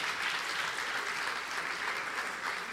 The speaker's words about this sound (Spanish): Dar un aplauso, hermano, a todas las personas que nos están viendo por cámara en este momento.